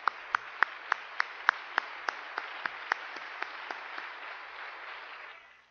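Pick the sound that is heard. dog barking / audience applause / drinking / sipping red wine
audience applause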